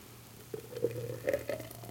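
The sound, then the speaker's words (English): A thick blended tequila drink pours into a glass in a few soft, gurgling glugs with faint splashy hiss, all over a steady low hum, with no talking. “Let's see if I can pour these without spilling them all over the place.”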